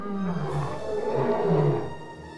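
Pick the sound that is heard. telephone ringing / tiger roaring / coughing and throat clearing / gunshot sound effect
tiger roaring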